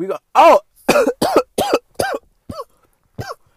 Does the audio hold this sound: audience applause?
no